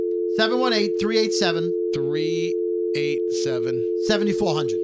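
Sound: telephone busy signal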